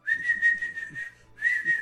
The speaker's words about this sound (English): Blow your whistle, Barry.